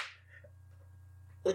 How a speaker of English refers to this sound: And I'm just waiting for a full flush-on slap across the face. One of these days, that's going to come, isn't it?